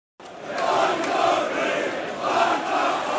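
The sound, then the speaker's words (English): A football stadium crowd at a Millwall match roars and cheers after Tom Bradshaw touches the ball in at the far post, in a sustained, loud wash of voices that swells and dips slightly over a few seconds, with no distinct single voice standing out. “That's got the crowd to life.”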